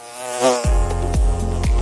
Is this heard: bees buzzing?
yes